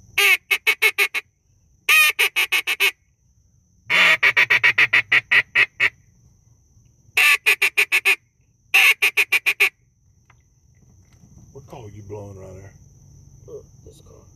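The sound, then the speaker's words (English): A new Beaver Creek blue-winged teal call, a duck game call, sounds five loud bursts of sharp, nasal honks, each a rapid run of about six to eight notes with short pauses between, followed by faint murmuring voices. “Guys, you hear us talk about Beaver Creek game calls.”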